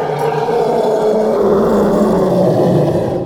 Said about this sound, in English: And then layered on top of that are these elephant growls, these horrible elephant growls. Not a lot of people even know elephants make this sound, but they do growl from time to time, and they produce this insane roaring.